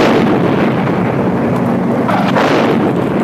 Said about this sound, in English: Oh my lord! There was a huge explosion!